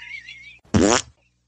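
A single loud, buzzy fart lasting about a third of a second, preceded by a faint high whistling tone and followed by silence.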